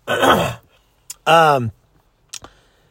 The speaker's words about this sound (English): I ran about a quarter of a mile the other night and my lungs are kind of burning for the next 2 days. That's not a joke, you guys. See, that's probably my runner's cough.